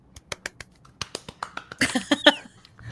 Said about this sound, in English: I always want to clap louder, but my mic is like right here and I don't want it. I know what it sounds like when I go back and edit it.